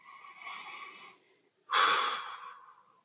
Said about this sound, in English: Last one. Inhale to four. One, two, three, four. Hold for four. Two, three, four. Exhale to four. Empty to four. And now inhale deeply. And exhale. And again, one more time.